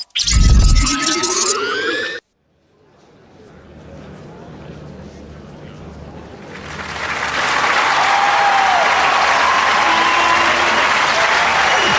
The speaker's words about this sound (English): Thank you. Thank you. Thank you again for such loving applause.